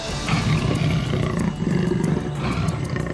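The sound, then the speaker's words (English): An enormous jaguar lets out a deep, rasping roar, loud and sustained for about three seconds with a brief dip in the middle before the throaty growl surges again. No one speaks. “An enormous jaguar stood guarding a temple door, its amber eyes shimmering like liquid gold.”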